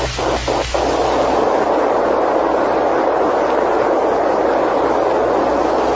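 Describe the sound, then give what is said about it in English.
A rocket ship taking off and heading straight up: a few quick sputtering bursts give way to a loud, steady, rumbling roar that holds without letup to the end, with no voices. “Now, take the controls and head us straight up until the gas analyzer picks up the trail of rocket exhaust from Barney's ship.”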